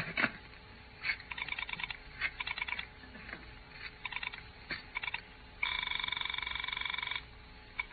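telephone dialing and ringing

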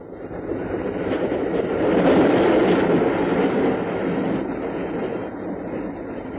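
train running on rails

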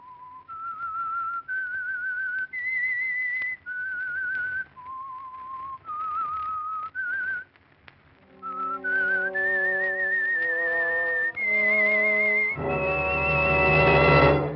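whistled theme tune

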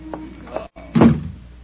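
front door opening

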